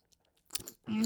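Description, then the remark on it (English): A short sip of a hot lemon Lemsip drink, a quick wet slurping burst, followed right away by a voice beginning to speak. “So what am I drinking? What am I drinking? Hot lemon Lem Sips.”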